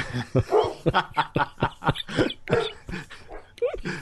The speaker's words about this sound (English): Oh, I'm sorry, I should have known. I should never do a Big Bang talk when I'm near the dogs. That's all right, just ignore them.